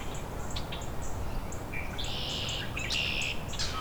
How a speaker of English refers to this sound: Rusty blackbird singing from exactly where he landed before, just in some dogwood.